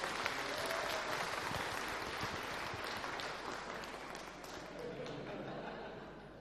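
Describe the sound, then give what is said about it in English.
A church audience breaks into sustained applause for a couple's engagement announcement, dense clapping filling the room steadily for several seconds with a faint murmur of voices underneath, easing slightly toward the end. “Why don't you give them a round of applause?”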